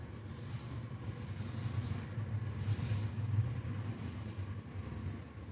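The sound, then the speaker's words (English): A train rumbling past: a steady, heavy low roar that holds through the whole stretch, with a brief high-pitched screech early on and no talking. “I'm gonna pause for the train real quick.”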